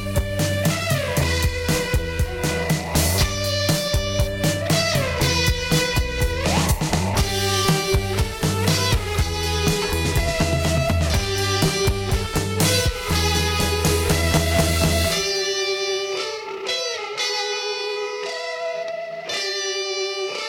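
A distorted electric guitar solo plays loud, bending notes over a full band with drums and bass. Near the end the band drops away, leaving the guitar alone and thinner.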